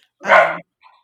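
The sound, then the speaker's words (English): A single sharp bark from Scarlett, a dog, rings out loud, followed by a brief, fainter yelp or whine trailing off; no talking. “Was that Scarlett? It was, yes.”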